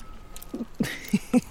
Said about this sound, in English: I mean, if you eat a little broad bean leaf, look, have a little taste. This one, listeners, is without black fly. And for those of you who don't know what eating sounds like, I'll do a bit.